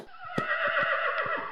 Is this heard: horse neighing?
yes